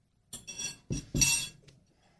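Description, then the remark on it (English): Ceramic bowls clink and knock together in a few bright, quick bursts, with sharp ringing contacts and some low thuds as they are handled and set down. “do we have the bowls here?”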